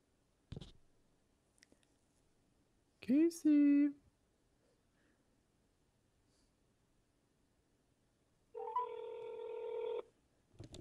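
A soft click, then a quick burst of electronic phone-dialing tones, followed after a pause by one steady buzzing ring tone lasting over a second, clear and close with no talking.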